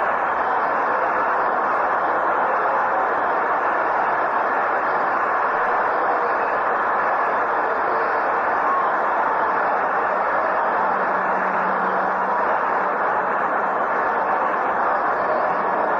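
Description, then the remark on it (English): A ballpark crowd applauds departing pitcher Jim Perry after seven and one-third innings, a dense, steady wash of clapping and cheering that holds at an even loudness throughout, with no voices rising above it. “And the fans respond with a warm round of applause for Jim Perry, who put on quite a show tonight.”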